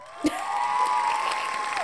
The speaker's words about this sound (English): I may put some hand claps on that one. So I'm cheering.